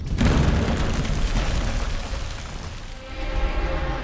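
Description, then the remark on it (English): Someone bursts up through a roof: a sudden, loud crashing boom gives way to several seconds of heavy rumbling and crackling debris of wood, glass and stone that gradually thins out, with no voices. “I go through the roof.”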